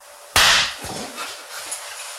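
A firecracker set off next to a man's head in his small, pitch-dark room goes off with one sudden, loud, sharp bang that rings out and fades, followed by a quieter second pop and a low lingering hiss.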